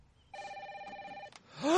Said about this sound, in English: The phone, it's actually ringing.